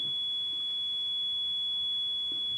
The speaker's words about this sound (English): Okay. maybe it is. Yeah, I think it is a fire alarm, actually. It's when it's the fire alarm. We had it earlier this week. It's like a lot louder.